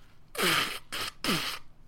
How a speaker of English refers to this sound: Disclaimer, if I sound a bit bunged up, a bit snotty, it's because the hay fever season has finally descended upon the UK, and I'm going to edit the rest of these out, but here is me blowing my nose.